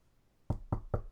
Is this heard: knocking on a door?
yes